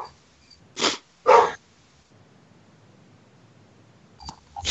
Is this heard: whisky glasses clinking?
no